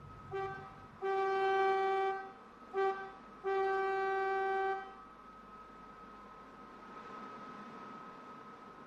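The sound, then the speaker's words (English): A ship's steel siren horn sounds from the sea in four loud, brassy blasts, short, long, short, long, then fades out, leaving a steady background hum and hiss. “till all was broken by that menace from the sea, the steel-bosomed siren calling bitterly.”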